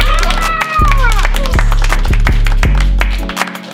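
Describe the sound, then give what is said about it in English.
A small group claps in a dense burst of sharp, overlapping smacks lasting a few seconds, with voices and a whoop or cheer mixed in underneath. “We haven't clapped, though.”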